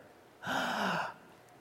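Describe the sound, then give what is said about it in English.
One loud, drawn-out dramatic gasp, a sharp breathy inhale with a faint voiced edge, heard on its own, lasting under a second before quiet returns. “Gasp.”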